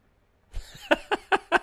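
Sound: hand clap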